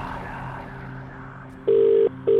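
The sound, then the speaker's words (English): A telephone ringback tone sounds over a low humming background, two long, loud electronic buzzes, the second cut off as it begins, as an outgoing call to a cash prize contest winner starts ringing. “I'm about to make the call.”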